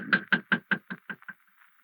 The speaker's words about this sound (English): Shall we knock? Yes, we shall knock.